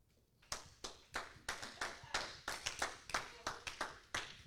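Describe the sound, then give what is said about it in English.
An audience claps along for Jesus in a steady, fairly quick rhythm, roughly fifteen sharp claps over a few seconds, clear with no talking over them. “Put your hands together for Jesus.”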